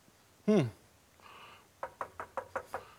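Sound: knocking on a door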